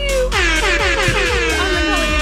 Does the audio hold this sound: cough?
no